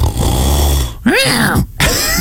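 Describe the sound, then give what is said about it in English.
A person imitates a growling snore, starting with a low, throaty rumble, then two short voiced, snarling bursts with a brief gap between them. It sounds fairly loud. “Number one is growling. Mm-hmm. People are snoring like this.”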